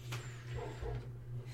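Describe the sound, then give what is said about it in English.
A few muffled barks from Jax, a dog shut in a bedroom right below, come faintly and dull as if through a floor, over a steady low electrical hum with no one speaking. “So, if there is noise in the background of a dog barking, it is because it's right below us.”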